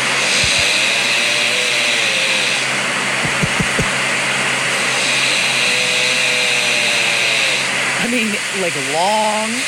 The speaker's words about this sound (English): This is 2:32 a.m. That's really me snoring? Yeah. What that sounds like is you're recording someone like it's summertime and they're trimming their hedges out in the yard.